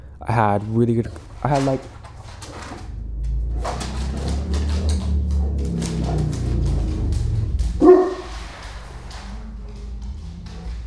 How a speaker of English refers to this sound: Sorry about that. It's my dog.